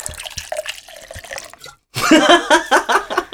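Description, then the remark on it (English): Liquid splashes and trickles for a moment as a drink is poured from a bottle, fairly quiet, then stops; after a brief pause, a voice starts talking loudly. “you better pour me more while I'm talking.”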